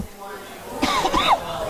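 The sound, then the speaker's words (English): A person with the mic flipped up coughs a couple of times in short, rough bursts to clear the throat, with a slightly voiced, throaty edge, fairly loud over a low, steady background hum, during a broadcast at BB Jackson in Cottage Grove. “I just flipped my mic up so I could take a second to cough and clear my throat”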